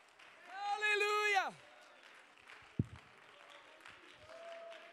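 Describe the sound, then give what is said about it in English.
A standing audience claps and cheers steadily, giving praise to God, while a loud, drawn-out shout of praise rises over the crowd and trails off, with scattered voices continuing beneath the applause. “And stand up clapping and shouting and giving God praise.”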